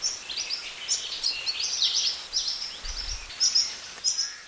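Repeated high, thin chirping calls from young Hawaii creepers (alawi) following their parents around a forest and begging for food, coming in quick insistent bursts, with faint forest ambience and no voices.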